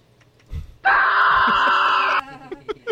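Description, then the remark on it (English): A voice mimics a man trapped in a cave screaming for help: one sustained, loud, strained cry lasting over a second, bracketed by short breathy vocal bursts and murmurs before and after. “He couldn't get a cell phone signal, and he screamed for help for hours.”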